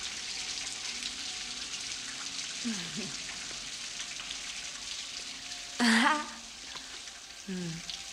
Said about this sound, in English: I love the rain. Yeah, it's groovy.